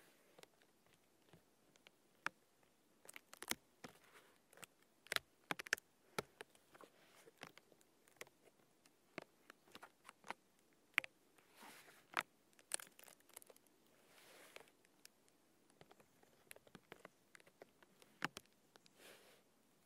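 Soft, dry crumbling and crackling of squishy, soft rotten wood beneath intact bark, a steady stream of irregular little snaps and crinkles, fairly quiet, with no voices.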